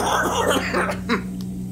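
A man's voice acts out a few harsh, raspy coughs, followed by a short, dry, breathy gasp, with no other sound around it.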